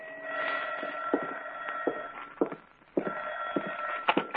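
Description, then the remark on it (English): A telephone bell rings loudly in an apartment at about 11 o'clock, two long continuous rings separated by a short pause, with no one speaking. “I'd sat down with a good book, and it was about 11 o'clock when the phone rang.”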